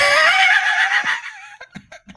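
A horse neighs loudly for over a second, a shrill, quavering whinny that trails downward in pitch, followed by a few short snorting bursts.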